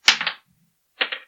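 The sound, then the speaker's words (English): Dice clatter across a hard tabletop in two short, rattling bursts separated by a brief pause, fairly loud, with no voices; the roll comes up 19. “A 19 on the dice.”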